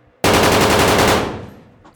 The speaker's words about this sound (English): So as you guys are hiding and you have gotten down, one of them starts shooting into the air.